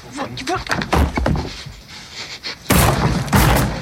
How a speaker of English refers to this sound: And Edie Falco runs away as he's bashing into this wall.